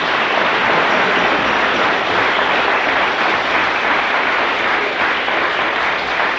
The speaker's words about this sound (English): This is his daughter. Bless her. Lovely. Give her a real clap.